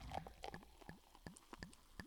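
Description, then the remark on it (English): A Prosecco cork pops, then drinks are poured with a steady run of hollow, rising glugs repeating about every quarter second, fairly quiet with no talking. “Anticipation cork pop and the pour.”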